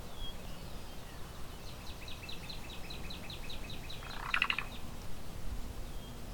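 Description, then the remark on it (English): A cuckoo a few feet away gives a call rather than its song while preening, repeating it every few seconds: a quick run of short, repeated high notes, fairly faint over steady background noise, with no one talking. “And it makes that call every few seconds while it's preening.”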